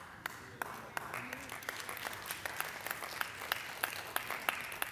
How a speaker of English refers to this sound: Not as many claps as I was looking for, but that'll be okay.